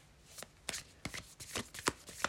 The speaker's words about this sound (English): I will be shuffling the Light Seer's Tarot.